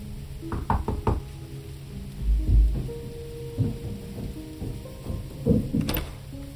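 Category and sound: household object, knocking on a door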